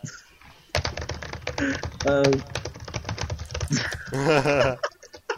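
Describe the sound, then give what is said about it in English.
Rapid typing on a computer keyboard, a steady stream of crisp key clicks running throughout, with people's voices talking over the clatter. “You're just going to hit keyboards for the next 30 minutes, guys.”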